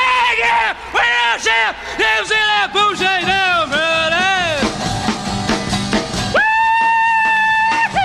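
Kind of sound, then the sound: human body sound, woman screaming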